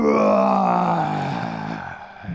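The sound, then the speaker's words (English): A person voicing the big bad wolf lets out a long, loud, growling roar, a rough sustained cry that slowly falls in pitch and fades slightly over about two seconds. “Even though the three pigs and Goldilocks were on the other side of the door, they could feel how loud and strong his roar was, and they got a little bit scared.”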